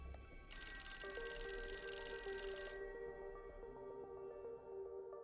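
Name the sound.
telephone ringing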